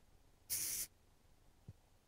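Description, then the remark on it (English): A single short, loud burst of aerosol texture spray hisses onto hair for under half a second to finish a hairstyle after a haircut, followed by a faint soft thump, with no talking. “And then this is the finish it up a little undone texture spray.”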